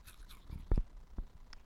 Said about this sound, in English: Go ahead and munch some saltless crackers. Cleanse these palates.